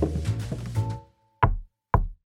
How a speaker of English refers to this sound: a knock at the door.